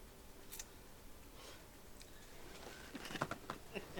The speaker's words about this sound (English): I guess it's real. It's really raining. It's really raining.